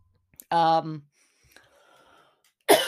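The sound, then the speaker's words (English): A short voiced throat sound near the start, a few faint clicks, then a sudden harsh cough at the end. No words are spoken. “So sorry this episode was so messed up with me coughing and everything else that I did.”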